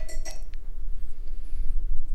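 A couple of bright, ringing glass clinks open the moment, then a drink is poured over a steady low rumble, with a few faint, brief ticks of glass later on.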